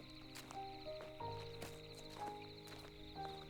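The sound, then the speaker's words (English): Footsteps crunch on sun-dried ground at a steady walking pace as a person walks back toward a cabin at dusk, about half a dozen soft, crisp steps over a sustained tonal musical background. “As I'm walking along, I hear my footsteps along the ground, crisp and soft.”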